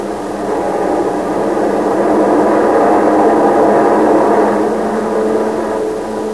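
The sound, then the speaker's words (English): A steady, broad engine roar of hundreds of propeller training planes droning overhead together fills the skies from coast to coast, swelling gently and then easing, loud and continuous with no voices. “And the skies from coast to coast echoed the roar of training planes, hundreds of them.”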